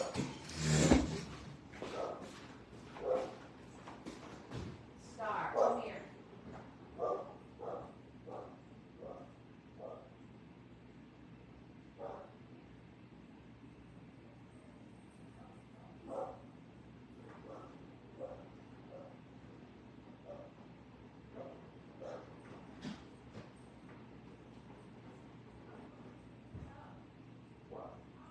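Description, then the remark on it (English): A female dog barks repeatedly, a loud burst of barks at first, then scattered, fainter barks continuing intermittently against a quiet background. “you guys hear Star barking”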